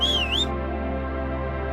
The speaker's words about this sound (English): Let's see audio effects. They got crow. They got laugh. A whistle.